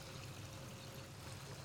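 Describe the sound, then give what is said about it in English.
A narrow brook, only a few feet across, flowing between two mossy stone walls in the Hudson River watershed, babbles and trickles steadily, its continuous watery rush filling the background at a soft, even level with no voices or other sounds. “It's definitely kind of your quintessential babbling brook. You can hear it babbling.”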